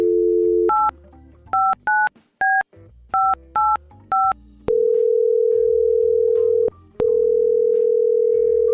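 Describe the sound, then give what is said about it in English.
A phone line hums with a dial tone, then about eight quick keypad beeps are punched in, followed by a long, steady ringing tone on the line with one short break, as a call is placed to a man to see if he answers. “We're going to try and get him on the phone. Let's see if he answers.”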